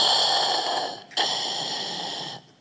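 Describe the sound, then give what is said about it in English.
A voice imitates heavy, muffled mechanical breathing: two long, hissing breaths with a brief pause between, loud, with no speech. “and a door from behind all the kids open, and all you can see in it is deep darkness, and smoke starts to billow out of this little cave, and you start to hear this muffled breathing.”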